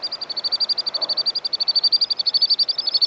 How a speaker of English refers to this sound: he's watching two beautiful sandpipers, a male and a female, a couple. And they're frolicking by the holy river.